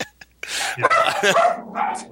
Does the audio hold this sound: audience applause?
no